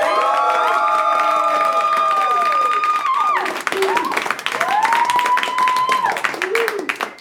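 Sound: audience applause and cheering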